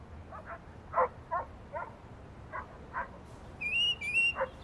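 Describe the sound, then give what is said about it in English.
A dog barks in a quick, uneven series of about eight sharp yaps over steady background noise, with a brief high whistling tone joining in near the end. “Dogs. We both hear dogs.”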